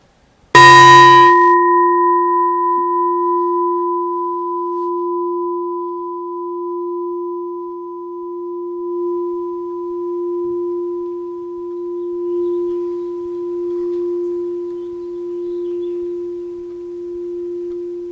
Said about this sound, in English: And we'll start and end with the bell.